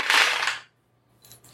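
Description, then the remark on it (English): Seven dice clatter and rattle across a hard tabletop in a dense burst for an attack roll in a game, then go quiet before a couple of faint clicks of them settling. No voices. “All right, so it's going to be 7 dice. And then I have to roll.”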